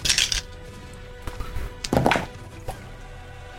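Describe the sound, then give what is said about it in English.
Dice clatter and tumble across a hard surface in a few quick bursts of sharp clicks and knocks, with short pauses between the rattles and no voices. “Oh, what I've been rolling is so shit tonight.”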